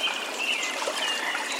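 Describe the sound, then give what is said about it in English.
A river flows with a steady, full rushing and burbling of water, constant throughout, while faint bird chirps thread through the background. No voices. Recorded in the early morning in 2022 beside the upper McLeod River in Shasta-Trinity National Forest, Siskiyou County, California. “The space you're hearing right now is an early morning recording beside the upper McLeod River in Shasta-Trinity National Forest in Siskiyou County, California.”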